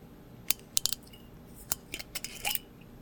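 A bottle of Taka sake being opened: a series of sharp, irregular clicks and crackles as the seal and cap are worked loose, with no one talking over it.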